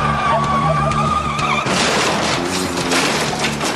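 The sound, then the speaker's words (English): A car in a video clip: the engine drones with a high tonal whine, then breaks into a loud, harsh rushing skid that continues to the end, intense, with no voices. “Hi, I'm Alan Partridge and I drive a car, but not like this.”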